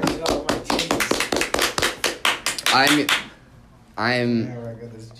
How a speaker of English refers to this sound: Everyone clap.